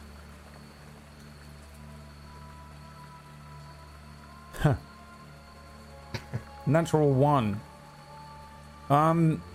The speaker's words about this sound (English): The rain coming down kind of on a muddy street here.